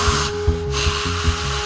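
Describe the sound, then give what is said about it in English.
A voice imitates scuba tank breathing: a steady, raspy hiss with low, pulsing throbs repeating about every half second, sounding mechanical and regulator-like, with no words spoken. “And my tank is going,”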